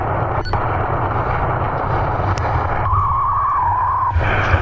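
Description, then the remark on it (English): An iPhone's power-on startup sound as its power button is pressed and held: one steady electronic tone lasting about a second, moderately faint beneath a constant loud background rumble and hiss. No one speaks. “The recorder should have picked up the noise, so I know that the phone is on.”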